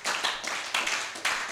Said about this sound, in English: Amen. I want you to clap for Jesus.